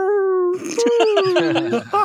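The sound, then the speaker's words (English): A voice imitates the whimper of a friendly dragon: a steady, nasal whine held briefly, then breaking into a string of shaky, quivering whimpers, fairly loud, with no other sounds. “Because whenever Atar is hit with something in this fight, in this last section, Quinn's friendly one, like the friendly dragon that he's released, feels it. It like whimpers. It goes.”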